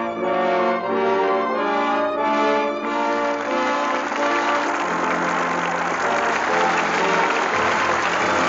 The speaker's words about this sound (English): With that well-deserved applause, our thanks to Jimmy Stewart and Joan Blondell, who come to the footlights for their curtain call.